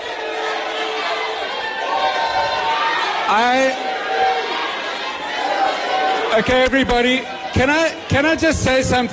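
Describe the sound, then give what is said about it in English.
A crowd at an election event where an ANC representative is present boos and shouts in a continuous, noisy din, with raised voices swelling into louder, jagged bursts toward the end as a man tries to speak over them. “I've never heard of an election won by booing.”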